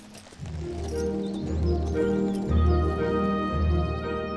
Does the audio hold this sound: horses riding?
yes